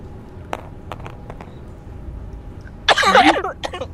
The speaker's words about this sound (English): Oh, badly timed. Cough.